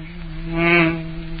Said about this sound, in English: Excuse me, friends, there's a mosquito in the studio.